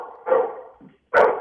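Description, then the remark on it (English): A dog barks twice, two loud, sharp barks separated by a brief pause, with a faint muffled sound between them and no talking. “Yeah, so got a company going up and the dog going up.”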